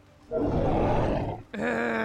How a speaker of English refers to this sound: The monster growled.